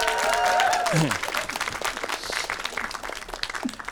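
A crowd breaks into sustained applause, many hands clapping in a dense, steady patter, with a brief whoop or cheer rising and falling at the start before the clapping continues on its own.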